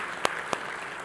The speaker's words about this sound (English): So let's all of you give yourself a wonderful hand clap. It was beautiful.